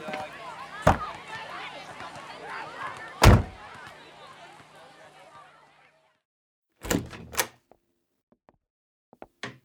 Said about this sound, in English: Mama, lock the door. Okay.